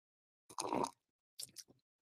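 Someone drinks water from a mug: a wet, slurping sip lasting about half a second, a short pause, then a couple of quick, quieter gulps and swallows. No one speaks.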